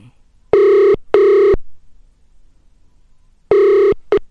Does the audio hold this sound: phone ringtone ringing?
yes